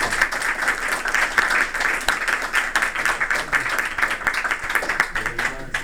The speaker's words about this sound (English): Let's give him a big round of applause, please.